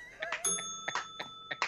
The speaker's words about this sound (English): Go ahead, ring the bell